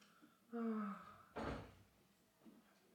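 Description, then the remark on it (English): A door swings with a brief creaky groan, then shuts with a single solid thud, followed by quiet room tone and a few faint handling bumps. “Closing the door.”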